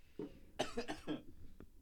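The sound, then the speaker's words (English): A loud, real cough in a few quick harsh bursts, preceded by a short throaty sound and followed by a faint click, with no talking. “Shut up, side cough.”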